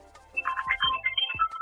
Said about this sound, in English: I'm sorry, my business phone is ringing. My apologies.